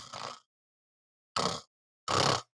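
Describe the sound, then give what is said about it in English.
A voice imitates snoring with three short, rasping snorts separated by brief pauses, each one noisy and breathy, fairly quiet, with no talking. “And Carmen is able to, you hear snoring over under the bushes as Carmen.”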